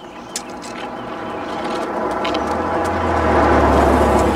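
A car approaches and drives by, its engine rumble and tire noise swelling steadily louder over a few seconds, with no one talking.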